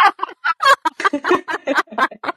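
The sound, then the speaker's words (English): A chicken clucks and squawks outside a window in a quick, uneven run of about a dozen short, loud bursts, with no talking over it. “My chicken was doing something really weird outside my window and it threw me completely off.”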